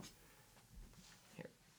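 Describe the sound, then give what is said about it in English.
A dog under a table snuffles and shifts around right up against the microphone, wiggling it, giving soft, irregular sniffs and rustling bumps, with a slightly louder burst near the end. “He's wiggling the mic. Don't worry. It wasn't... All the stuff he was doing wasn't, like, super... loud.”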